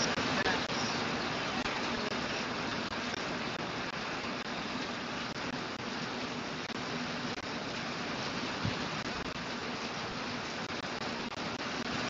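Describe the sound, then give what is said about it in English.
Heavy rain pours down steadily for the whole stretch, a dense, even hiss of falling water with no pauses, fairly loud. “Anyways, let me continue this one amid the heavy rain that has been happening here.”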